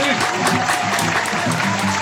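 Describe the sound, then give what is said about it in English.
Steady, loud applause from a live show audience in Pine Grove, Ontario, welcoming back the show's bartender, with cheering mixed in: a dense continuous clatter of clapping that holds its level for about two seconds. “Let's hear it for him.”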